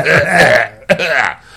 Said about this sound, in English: It's cold. Ooh, it's chilly. They said the hot weather, the dry weather. Can't stop this coughing.